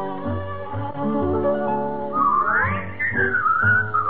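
A bright whistled melody rises and glides over a steady band accompaniment, entering partway through and carrying the tune clearly and fairly loudly to the end, with no talking.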